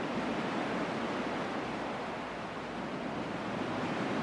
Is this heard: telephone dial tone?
no